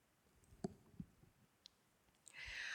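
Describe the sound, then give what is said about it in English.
A few soft, scattered taps and clicks, then a brief rising, rustling riffle as a Kuan Yin Oracle card deck is shuffled. Quiet, with no talking. “So, okay, as I was just talking, I was shuffling my Kuan Yin Oracle deck to get the message that she has for us today, because that is who I felt wanted to come in as a guide today.”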